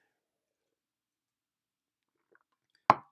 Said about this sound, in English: Let me just grab a drink of water here.